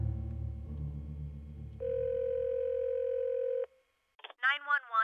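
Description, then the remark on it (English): A low rumbling hum gives way to a steady, loud phone dial tone lasting about two seconds as someone dials 911 on a phone. After a brief silence, short voice-like sounds follow. “I fumbled for my phone and dialed 911.”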